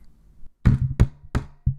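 Three heavy knocks bang on a wooden door in a steady rhythm, loud, with a fourth blow starting at the very end. Each hit has a booming low thud and a short ring.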